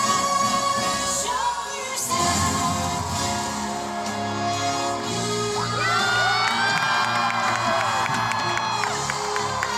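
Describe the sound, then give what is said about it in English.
A large audience cheers loudly and continuously, then erupts midway into a surge of high-pitched screaming and whooping that keeps building through the end, as the performer on stage makes a quick costume change. “And then everyone's screaming.”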